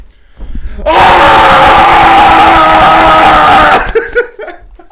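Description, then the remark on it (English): A person lets out a loud, sustained hoarse roar-scream imitating a gorilla's call, lasting about three seconds, followed by brief breathy sounds and faint laughter. “Is that your entry for gorilla?”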